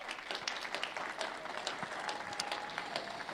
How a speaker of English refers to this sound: We've got a couple of gifts. You can clap for them. That's a good idea.